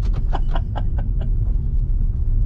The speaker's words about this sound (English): Hey, there's our thing horn-wise. Ooh. There's our Mitsubishi Mirage.